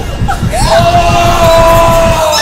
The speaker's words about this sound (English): It's not ending until somebody screams loudly.